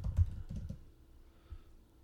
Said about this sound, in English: I typed it before you said it, and you could hear it on the recording. Tap tap.